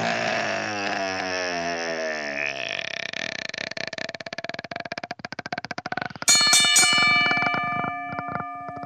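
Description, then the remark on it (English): A long, rasping, burp-like vocal sound gives way to a sudden bright bell strike that rings out with a sustained, slowly fading tone near the end. “Ring the bell!”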